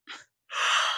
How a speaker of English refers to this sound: I'm curious what would happen as I yawn.